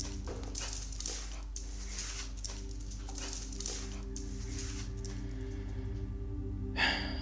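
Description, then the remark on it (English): A dog named Bruno sniffs around inside a house, searching for a trespasser, in quick, breathy bursts, a rapid string of short inhales over a steady low hum, ending with a slightly louder snort. “Sniff him out, Bruno.”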